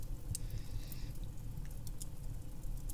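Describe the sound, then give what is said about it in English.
Quiet drinking sounds: a few soft gulps and small wet clicks as someone drinks a glass of water, over a low background rumble, with no one talking. “Thankfully, like any good streamer, I have here a glass of ordinary water that I will now drink.”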